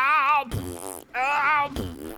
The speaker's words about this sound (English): Farting, and I can't stop farting. It's impossible. Farting, I just can't stop farting. Oh, it just keeps coming out my butt.